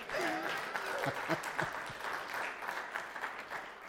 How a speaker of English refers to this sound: That's a good place to clap your hands and say amen.